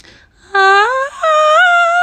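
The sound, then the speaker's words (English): A voice imitates a soft, sing-song scream: two sustained, wavering cries with a rising pitch, the first starting low and sliding up, the second holding a steady high note. “It just kind of sounds like she's screaming, like but like in really soft, sing-songy tone.”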